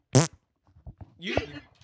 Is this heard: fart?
yes